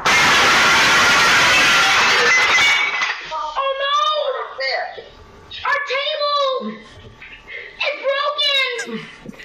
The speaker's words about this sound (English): Well, the table broke. Just the kid is all shocked that the table broke.